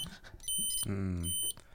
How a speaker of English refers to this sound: just put a stud detector up to the microphone. That was the beep.